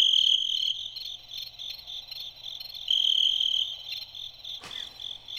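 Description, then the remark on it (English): A cricket sound effect: crickets chirp steadily in pulsing trills, a high-pitched chorus that swells and fades in waves over a low background hum, with one brief soft thump near the end. “or the crickets last too long.”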